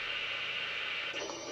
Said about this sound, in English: something's wrong with your mic, you're staticking. You got heavy static there.